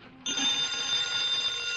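A telephone bell starts ringing abruptly and keeps going in one loud, continuous metallic trill, with no voices over it.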